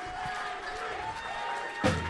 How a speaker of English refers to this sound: Crowd goes crazy. The kid just left with two fucking Royal Rumble tickets. I love that.